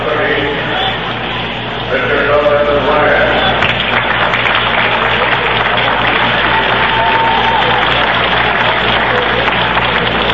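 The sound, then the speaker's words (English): Scattered applause from Giants fans for Nolan Ryan during a Mets–Giants baseball game rises out of a steady crowd murmur, a thin, continuous patter of clapping with indistinct voices mixed in throughout. “Ryan getting a smattering of applause from the Giant fans who appreciate good baseball.”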